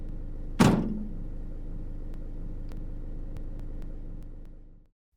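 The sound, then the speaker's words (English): A single heavy door of a news van slams shut, followed by a steady low engine rumble that holds for several seconds before cutting out as the van drives off. “After the news team left, racing off to the next scene of disaster and human tragedy, I was left standing at the police car.”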